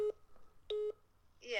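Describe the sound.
A synthetic phone ringtone for an incoming call chirps in short electronic bursts, a quick beep followed by a longer tonal pulse, then a voice starts speaking over the end of it.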